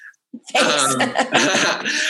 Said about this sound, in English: God bless you.